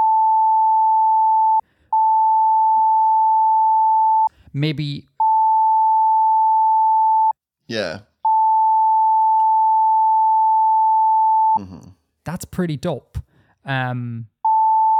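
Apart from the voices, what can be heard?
censor beep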